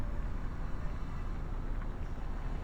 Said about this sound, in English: excuse you, truck.